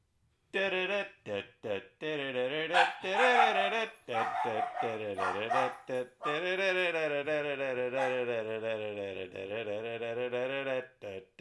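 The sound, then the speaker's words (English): A household's dogs bark in the background in a quick run of short, loud bursts, then a long, wavering stretch of sustained voiced sound follows, with a person's voice mixed in. “We record this podcast and a lot of times, our dogs bark in the background and we're sorry about that”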